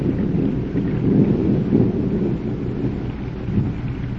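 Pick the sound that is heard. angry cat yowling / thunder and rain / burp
thunder and rain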